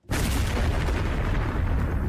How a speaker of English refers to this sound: And I know I use these explosions a lot, but you guys, that was not right.